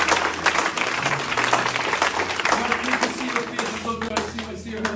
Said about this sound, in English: Let's give a round of applause for those who say that.